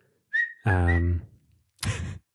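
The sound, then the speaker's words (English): A short whistled phrase imitating a sound from a song, its pitch rising and holding briefly alongside a low hummed voice, followed by a couple of breathy bursts. “That was my attempt at the little whatever sound that is.”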